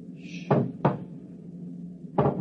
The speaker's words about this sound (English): It's at the door. Get ready. And it's opening the lock.